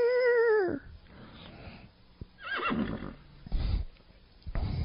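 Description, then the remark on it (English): A horse lets out one loud whinny that wavers and drops in pitch, then quieter snorts and rustling shuffles follow with no talking. “Yeah, it's not a good thing when you ask a girl her age and she starts stomping her hoof.”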